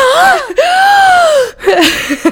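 A loud, exaggerated gasp of mock shock: a high, drawn-out rising-and-falling cry that breaks off with a short breathy catch.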